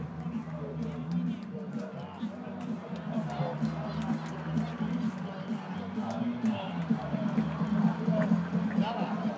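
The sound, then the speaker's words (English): A large stadium crowd roars and murmurs in a dense, steady wash of voices as a hit by Todd Frazier falls short of a home run in a timed home run contest, with scattered sharp claps and shouts poking through, sustained at a fairly loud level throughout. “Oh, this crowd wanted it.”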